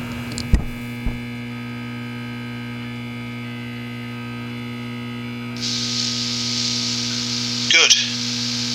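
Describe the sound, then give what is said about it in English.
A steady electrical mains hum with layered harmonic tones drones throughout, like an old TV not quite tuned in and ghosting, joined midway by a hissy band of static, with a couple of sharp clicks early and a brief crackling burst near the end. “It's like it's not quite tuned in. It's sort of like an old TV, just ghosting.”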